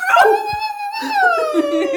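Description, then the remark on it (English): A person imitates a husky dog with a loud, wavering howl, sliding up and down in pitch across two drawn-out phrases with no talking. “Huskily? It's like a dog.”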